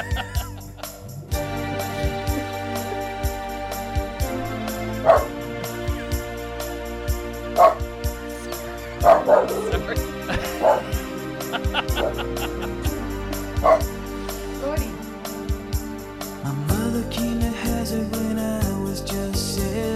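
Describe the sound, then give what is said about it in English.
A dog barks about five times, short sharp yips spaced a few seconds apart, layered over a moody song with steady instrumental tones playing throughout. “My dog loves it.”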